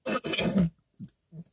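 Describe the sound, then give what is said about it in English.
A loud, raspy burp blown through a kazoo makes a buzzy, growling drone, then two short, low, croaky bursts follow after a pause. “I just burped into my kazoo.”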